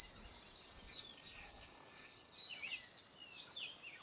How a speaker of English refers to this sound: And here is another sound of a poison frog.